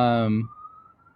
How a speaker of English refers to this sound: Welcome to New York City in the background. I was going to say, every week there's a cop car and an ambulance going by there.